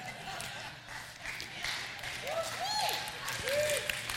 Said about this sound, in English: You Caucasians do not know what you're clapping for, so don't clap.